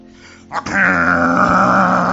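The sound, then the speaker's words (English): A man's voice imitates snoring, changing pitch from key to key: a brief breathy rasp, then a loud, sustained groaning drone held for over a second. “That was the kind of snoring that those guys were snoring.”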